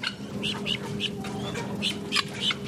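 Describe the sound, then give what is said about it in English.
Birds cluck and squawk in quick, repeated bursts inside a live chicken market in Manhattan on the day of a record snowstorm, with a steady mechanical hum and faint background murmur filling the space underneath. “The folks at Manhattan Live Chicken Market say they've lost a few customers since bird flu hit the headlines.”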